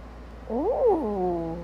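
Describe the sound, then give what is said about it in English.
A human voice imitates a whale: a single drawn-out, tonal moan that swoops upward, peaks, then slides down and trails off into a lower, steady hum, with no other talk. “Just in case you haven't been listening long, I don't even remember when it started, but we make whale noises now after our introduction.”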